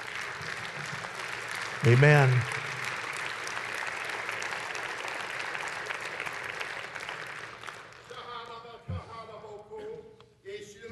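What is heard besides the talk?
audience clapping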